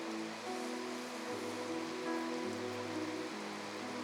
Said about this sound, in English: And we have to put a ceiling in to dampen the sound of the rain.